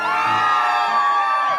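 A crowd cheers and whoops loudly and continuously, a dense wash of many voices with high yells rising above it, sustained for a second or two without a break.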